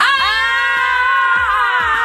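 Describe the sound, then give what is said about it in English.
Two or more people let out a loud, sustained, high-pitched scream together into microphones, holding it steadily for about two seconds with no words. “Let's scream into the mics.”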